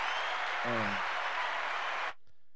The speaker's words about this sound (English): You want to wave to the crowd, get the applause going? Yeah, let's do that.